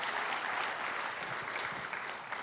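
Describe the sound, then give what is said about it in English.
An audience claps steadily, a dense, even patter of many hands with bright high-pitched crackle that holds at a constant loudness throughout, with no voices standing out. “If you would like to clap, you could clap.”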